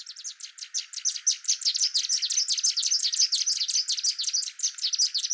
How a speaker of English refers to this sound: And so it just sounds louder than a single bird singing, and faster. From the recording, if you don't know what you're looking for, quite hard to make out that it's actually two birds singing.